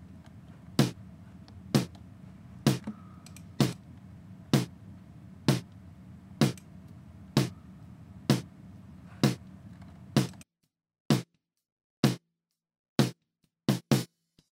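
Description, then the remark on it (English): A snare drum in a drum mix strikes at a steady, even pace, first with a low rumble of bleed between hits, then with a tight noise gate applied so each sharp crack is clipped off into silence. “I put a gate on there, which sounds like this.”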